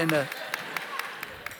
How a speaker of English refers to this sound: They are currently, it's wonderful. But if you're clapping, I'm asking for you to open those wallets.